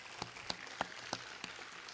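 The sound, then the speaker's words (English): Faint, sparse clapping for the readers: about five or six sharp hand claps at an uneven pace over two seconds, with no voices, like the thin tail end of a round of applause. “Let's give all our readers a big round of applause.”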